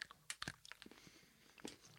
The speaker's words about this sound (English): Mm. Ooh. Ooh. Hazelnutty. Crunchy. Mm. Oh, that's so good. I haven't had that this one before. That is actually delicious. I feel like we're doing ASMR chocolate. Yeah, that's it. I don't want to get too, like, close to the mic with my chewing sounds